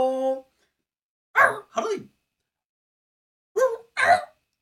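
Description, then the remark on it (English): A person imitates a small dog, letting out two pairs of short, sharp yips separated by a pause, after a brief voiced tone at the start. “Are you like a chihuahua?”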